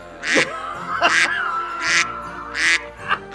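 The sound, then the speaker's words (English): Four loud, raspy duck quacks in a loose, uneven rhythm, each a short nasal burst, with a faint shorter fifth at the end, with no talking. “Don't duck sound effect me.”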